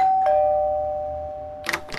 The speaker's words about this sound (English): I'm just going up to his drive now and ringing the doorbell.